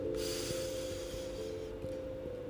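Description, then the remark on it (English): A single deep, drawn-out inhale through the nose during a breathing exercise, fairly loud, lasting over a second and then trailing off against a steady low background hum. No one speaks. “Breathe the oxygen in.”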